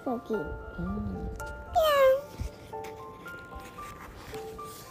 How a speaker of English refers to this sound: Meow.